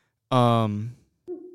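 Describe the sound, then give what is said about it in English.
A person imitates an owl's screech: one loud, harsh, drawn-out shriek lasting under a second, followed by a short, quieter tonal call after a brief pause. “So we're walking out, it's pitch black, and we're hearing like screeching noises, like owl screeching noises, and we're freaking out.”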